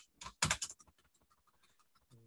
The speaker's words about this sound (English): So I've sort of jammed a keyboard on here, and I have one, and it's a gaming keyboard. I could play with it. It is a bit noisy, but you'd get over it. Most gaming keyboards are noisy. Listen to it.